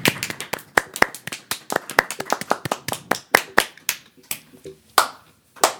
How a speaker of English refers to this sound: Okay, like clap for like 12 seconds.